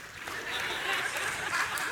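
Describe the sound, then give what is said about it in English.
A crowd breaks into steady, fairly dense applause, many hands clapping at once with a soft murmur of voices underneath, holding at an even level throughout. “Don't clap.”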